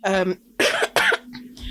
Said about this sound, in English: sorry for coughing.